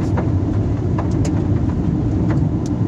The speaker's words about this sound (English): Okay, so the freeway traffic has picked up a little bit.